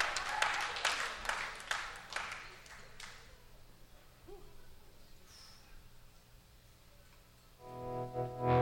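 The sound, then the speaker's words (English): A concert crowd claps loudly for a performer for a few seconds, the applause thinning and fading away, with a scattered whoop, before a voice comes in at the end. “Clap it up for him.”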